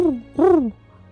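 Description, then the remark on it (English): A single owl hoot rings out, fairly loud, a rising-then-falling tonal call lasting about half a second, preceded by a brief softer note, with no talking. “And the owl next to you.”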